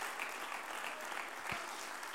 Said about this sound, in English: Oh, clap your hands unto the Lord today.